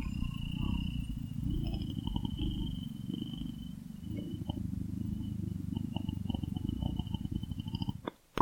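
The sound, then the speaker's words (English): A person imitates a cat's purr at a cat named Smudge: a steady, low rumbling vibration that runs continuously for several seconds before ending in a sudden louder burst. “I was purring at Smudge, but now I am meowing.”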